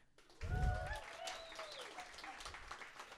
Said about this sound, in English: Give me a round of applause if you've played hide and seek before.